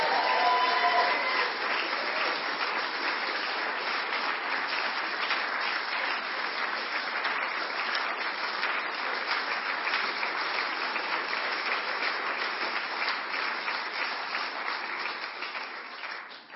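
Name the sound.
audience applauding and cheering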